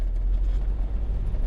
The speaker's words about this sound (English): I keep driving, alone, thinking about other people's conversations.